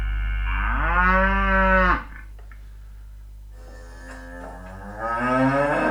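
A cow gives a loud, drawn-out moo, pauses for a couple of seconds, then starts a second low moo that rises near the end. No one speaks.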